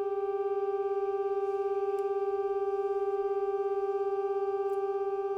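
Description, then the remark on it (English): A steady, unchanging electronic drone built from stacked pure tones, held at an even level for the whole stretch with only faint flickers of texture above, like minimal ambient music. “This is music, by the way. This is not an example of what it's like to lose your hearing.”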